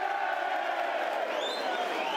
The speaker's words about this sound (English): I don't think West Brom are happy with the situation. West Bromwich Albion crowd, vague noise of disgruntlement.